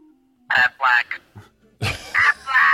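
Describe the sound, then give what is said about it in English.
A duck quacks the word "Aflac" in nasal, squawking bursts, twice in a row with a short pause between. The calls are loud and close, with no other sounds around them. “This guy's like, Aflac.”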